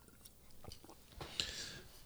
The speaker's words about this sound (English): But real quick sip.